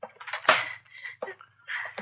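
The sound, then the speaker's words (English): Metal silverware clatters and jangles in quick bursts as someone rifles through a kitchen drawer, with a sharp clank near the start and more scraping, rattling rummaging after brief pauses. “The drawer. Silverware.”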